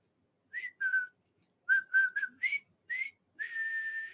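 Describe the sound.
Someone whistles the jaunty march theme from the war film The Bridge on the River Kwai: two quick notes, a pause, then a brisk run of short notes that ends on a long held tone. Clear and fairly loud, with no talking.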